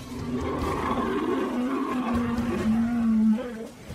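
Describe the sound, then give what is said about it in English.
A deep, sustained elephant roar from its mouth rumbles steadily for several seconds, loud, with a strong low tone that swells slightly before fading near the end. “Well, it is coming from the mouth. That's not coming from the little trunk.”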